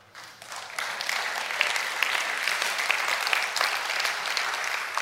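Sustained audience applause, a dense crackle of many hands clapping steadily and loudly from start to finish, with no speech over it.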